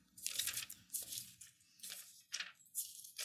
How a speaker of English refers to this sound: I love that page turning in the mic. Sounds really good.